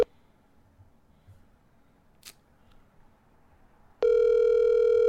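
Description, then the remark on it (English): After a few seconds of near silence with a faint click, a loud, steady electronic ringing tone of an outgoing phone call to a father starts abruptly and holds without a break. “Dad, if you're listening to this, you don't love me if you don't answer the phone.”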